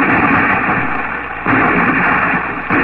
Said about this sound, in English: From the deck of the Ark Royal, Admiral Drake's cannon gave signal for battle.